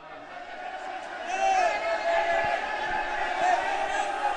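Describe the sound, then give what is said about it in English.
A crowd of men yelling, waving their arms and placing bets at a cockfight around a ring about 2 meters high ringed by concrete tiers of plastic chairs, many overlapping voices shouting at once in a steady, dense roar that swells louder after the first second and stays intense throughout. “There's yelling, there's arms waving, there's men with satchel bags taking bets.”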